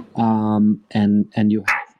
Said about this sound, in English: You'll have to excuse me if my dog barks, which he just did.